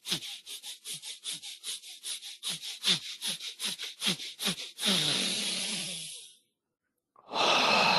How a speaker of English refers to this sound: So ensure that you're breathing all the way till your belly, and then you're pumping with your diaphragm as well.